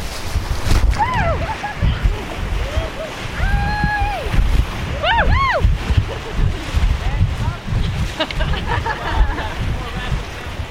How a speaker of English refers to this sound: It's going to be our best rapid of the day. This is fun. Can be class 3 in higher water, probably class 2 plus right now.